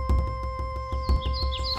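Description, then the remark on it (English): A few quick, high bird chirps and tweets come in partway through, layered over a steady, rhythmic musical backing with low pulsing beats and held tones. No one speaks. “Emperor Elm put out a call to his royal army of birds.”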